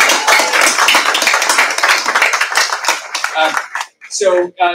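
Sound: audience round of applause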